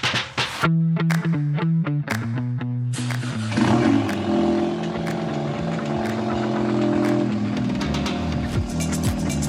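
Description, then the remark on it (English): A 2017 Ford Focus ST engine blips through several quick revs with stepped, rising pitch, then settles into a loud, sustained throaty roar with a steady droning tone and no talking. “Yeah, that was Bailey with his 17 Focus ST rocking it right there.”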